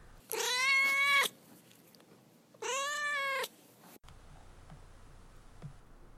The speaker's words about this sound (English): All right, now we'll move on to Duarte's Corner, where I give my cat Duarte the opportunity to express his opinions about the book that we've just read.